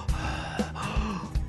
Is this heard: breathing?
yes